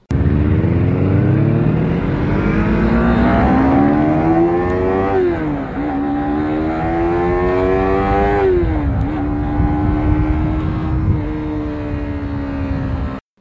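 A Yamaha R3 sport bike with its stock exhaust revs up steadily through the gears, its pitch climbing then dropping at two quick shifts before rising again, loud with no talking.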